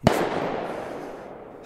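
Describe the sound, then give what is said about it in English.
A sharp firework bang from kids lighting fireworks in the woods bursts out, followed by a long crackling, echoing decay that slowly fades, then another blast begins just as the sound cuts off. No voices are heard. “kids lighting fireworks in the woods.”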